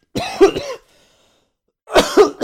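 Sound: cough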